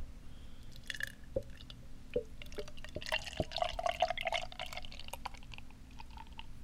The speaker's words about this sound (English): I'm going to open this beer right now. I haven't told you what the beer is yet. I know. Indeed, I will pour this magnificent beer out.